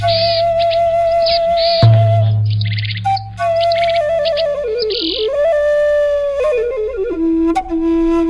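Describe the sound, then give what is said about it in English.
Short raspy, buzzy notes of a boreal chickadee's wheezy call repeat in brief bursts over a steady whistled tone and low hum, with no one speaking. “It's today's Talkin' Birds featured feathered friend, the boreal chickadee.”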